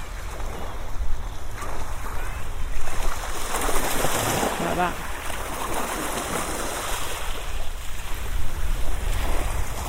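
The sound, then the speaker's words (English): Tiny waves wash and gently lap against a beach shoreline with occasional soft thumps, set against steady wind rumble; a brief voice murmurs once partway through. “It's a tiny little waves hitting the shore, and sometimes they gently lap around, and sometimes they sort of thump.”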